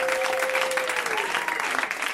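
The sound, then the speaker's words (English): An audience applauds steadily to welcome a comedian coming on next, a dense wash of many hands clapping at even loudness, with a thin, steady whistle-like tone underneath that slides downward partway through. “Please, let's just make more applause with our hands.”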